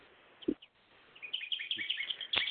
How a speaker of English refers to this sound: Seemed to be some crosstalk with a bird in the background.